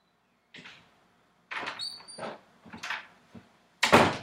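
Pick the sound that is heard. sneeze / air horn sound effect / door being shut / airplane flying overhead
door being shut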